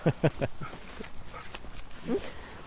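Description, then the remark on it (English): Cattle of about 1,800 pounds let out several short, rough moos in quick succession while bucking and kicking in anticipation of sweet feed as a man walks along the fence, followed by a scattered call or two later over a noisy outdoor background with faint voices. “So as Doug walks along the fence, they're bucking and kicking and mooing in anticipation”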